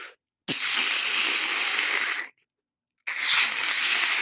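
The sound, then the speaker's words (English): A person imitates blowing up a balloon with two long, forceful, hissing breaths out, the first lasting nearly two seconds and the second starting after a brief pause. No talking. “You know how you mouth inflate a balloon? Where you put the balloon nozzle up to your mouth and then you go...”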